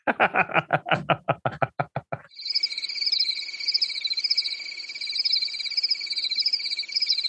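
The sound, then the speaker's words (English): A quick run of about a dozen sharp, rhythmic percussive pulses gives way to a steady, high-pitched chorus of crickets chirping continuously and fairly loudly until the end. “I'm just going to put in crickets.”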